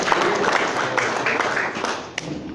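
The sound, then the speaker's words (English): An audience applauds the laureates steadily, a dense wash of many hands clapping at an even, sustained loudness for a couple of seconds with a few sharper individual claps standing out. “So, please can you put your hands together for the laureates?”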